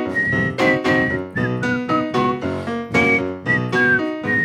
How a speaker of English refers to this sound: Love a whistle solo always.